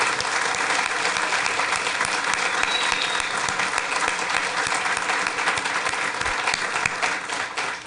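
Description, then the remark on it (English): A crowd claps steadily for several seconds, a dense, even wash of many hands that stays loud throughout before easing slightly at the very end; the applause is for Jerry West being in the audience. “But I would like to lead a round of applause for Jerry West being in the audience.”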